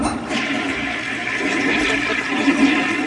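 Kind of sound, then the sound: household object, toilet flushing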